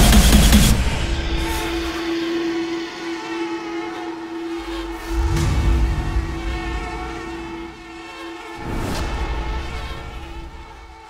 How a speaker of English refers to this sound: You're going to get sick of that sound if you don't like mosquitoes.